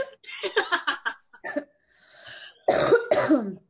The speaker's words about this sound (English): get it, girl. Cough it out. You got it.